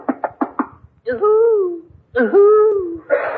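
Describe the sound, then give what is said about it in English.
Four quick knocks rap out, then a voice gives two long, wavering owl-like hoots, each sliding downward, fairly loud, imitating a wise old owl hooting from an ancient oak tree. “At last I approach the ancient oak tree wherein dwells the wise old owl.”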